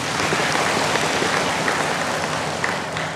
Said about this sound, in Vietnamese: Ý rất là hay, cho tràng pháo tay.